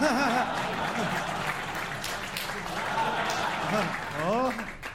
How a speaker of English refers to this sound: And now we'll have like a smatter for the applause with like sort of a polite laugh